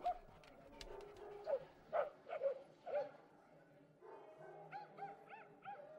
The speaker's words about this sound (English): look at our dogs. They're having a whole conversation right now. They're still friends.